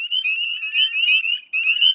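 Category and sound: animal, spring peeper frogs calling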